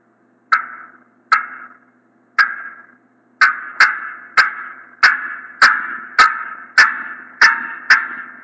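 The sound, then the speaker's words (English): A hen turkey's excited cutting: sharp, loud clucks that start spaced out and speed up into a rapid, irregular run of about a dozen notes, with no voices. “our next call that we want to hear is the cutting of an excited hen turkey.”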